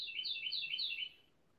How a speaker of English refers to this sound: So, again, as we said, sorry about the bird wanting to get into the show now, but it maybe provides a little background color.